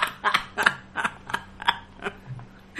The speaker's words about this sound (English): Quack.